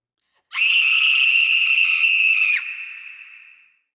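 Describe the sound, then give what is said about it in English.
A woman lets out a single long, piercing scream, loud, held steadily for about two seconds before trailing off into a fading echo. No one speaks. “he hears … screaming from the kitchen”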